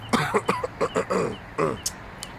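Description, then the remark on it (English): A hoarse fit of coughing: several quick, raspy bursts in a row with short gaps, ending in a pair of fainter coughs. “you are coughing.”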